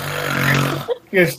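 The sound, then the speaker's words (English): A voice imitates very heavy snoring from a tent: a long, rumbling, rattling inhale lasting nearly a second, followed by a couple of shorter snorting bursts, loud. “In a nearby tent, you just hear, like, the heaviest snoring known to man, just...”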